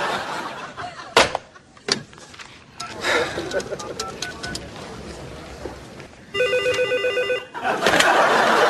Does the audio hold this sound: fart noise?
no